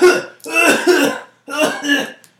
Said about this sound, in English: That cough is too wet for the corona. That's what I'm saying.